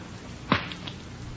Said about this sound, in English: Let me take the back off the watch for you.